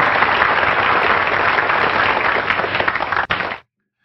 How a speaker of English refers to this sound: Happy Festivus for everybody, to everybody. Here's a, yeah, Festivus. We need some applause for that, right?